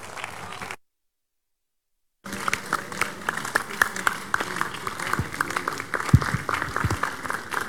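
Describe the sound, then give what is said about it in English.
A church audience rises and bursts into sustained applause, giving Jesus a big hand of praise. Many hands clap in a dense, steady roar with a few louder claps standing out, after a brief silent gap at the start. “For this amazing act of God, shall we rise to our feet, giving Jesus a big hand of praise for what he has done.”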